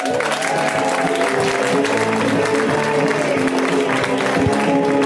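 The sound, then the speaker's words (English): Steady, dense applause from a comedy show audience welcoming comedian Emma Willman, continuous and fairly loud for about five seconds, with some cheering and a faint musical or vocal tone running underneath. “A round of applause for Emma Willman.”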